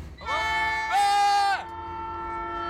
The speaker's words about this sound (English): There's a train! Hey guys! Do you hear that guest on our podcast?